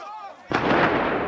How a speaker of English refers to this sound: Gunfire. Close to the Palestine Hotel later that week.